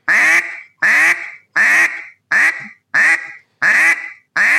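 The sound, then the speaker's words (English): A steady series of seven loud, raspy duck quacks blown on a duck call, each note started in the caller's throat, evenly spaced with short pauses between each one, clear with no talking. “But if you just got to find that quack, find that happy medium, and just continue to do it. That's what I'm doing in a call.”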